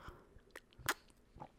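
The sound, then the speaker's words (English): A quick sip of coffee: a short slurp with a few soft mouth clicks and a swallow, quiet and with no talking. “I'm just going to have a quick sip of coffee, my friends.”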